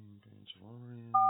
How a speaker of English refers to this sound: So we're going to get out the phone, we're going to dial up Tatooine, and we're going to hope that the Banjolorian answers.